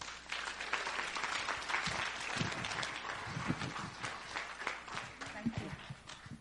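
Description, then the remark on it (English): A crowd applauds a woman after her speech, steadily for several seconds, a dense wash of many hands clapping at once, with a few voices faintly mixed into the noise. “Give her another clap.”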